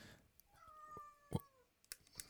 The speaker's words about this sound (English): Do you hear that? Oh. I locked my cat in. Hold on.